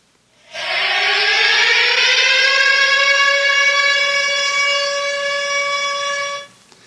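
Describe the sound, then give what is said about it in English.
A loud air raid siren in Ukraine, warning of a threat in the air, winds up in pitch and holds a steady, blaring wail for about six seconds before cutting off abruptly, with no voices present. “An air raid siren, of course, if you didn't know, if you've not heard one of those before.”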